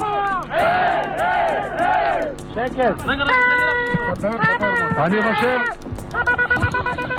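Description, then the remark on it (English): A crowd of men, paratroopers gathered in front of the Western Wall in Jerusalem's Old City after capturing it, shouts, weeps and cries out in overlapping, wavering voices, while steady, sustained horn-like blasts of a shofar sound through the clamor in a couple of long bursts. “In short order, the paratroopers capture the old city in the Temple Mount, and the soldiers gather in front of the Western Wall, weeping, shouting, and blowing on the shofar.”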